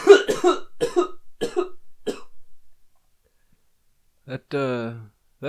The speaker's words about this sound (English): You know that cough of glory?